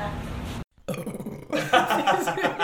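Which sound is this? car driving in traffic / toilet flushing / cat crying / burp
burp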